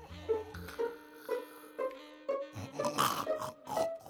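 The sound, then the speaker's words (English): Loud, rhythmic snoring from a woman, one of the Tone Deaf twins, asleep on a couch in a living room: a series of coarse, grunting snorts that repeat about every half second, growing heavier and more ragged toward the end, with no talking. “I don't even snore that loud.”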